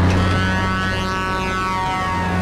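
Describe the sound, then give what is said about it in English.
A big truck horn blares in one long, unbroken honk, loud and steady, with a deep, brassy tone that holds for the full length without pausing. No voices are heard. “But one thing I wanted to make sure we pointed out was the horn honking.”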